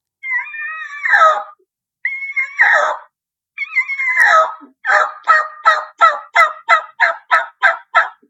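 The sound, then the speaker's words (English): Turkey calls blown on a mouth call: three drawn-out, raspy high yelps with short pauses, then a quick, steady run of about ten sharp, clipped notes. Loud and alone, with no talking. “Now, with your mouth calls, I mean, obviously there's a plethora of boxes and slates that everybody uses.”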